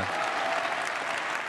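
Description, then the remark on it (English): Steady applause from a crowd in a played recording, a dense wash of many hands clapping at an even, sustained loudness with no pauses or voices standing out. “I think they just clap it.”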